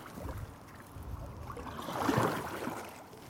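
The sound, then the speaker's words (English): A kayak paddle dips and pulls through the water of the River Thames on a Thursday evening, a soft swish and gurgle that swells once mid-clip over a steady low wash of moving water, with no voices. “I'm here as a member of Chelsea Kayak Club kayaking on the Thames on a Thursday evening.”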